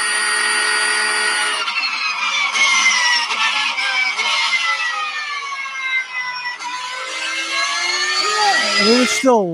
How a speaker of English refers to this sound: Oh, this is the Porsche. Not a sewing machine. This is the Porsche. A hair dryer. Let's listen. Yeah, that sounds like a hair dryer.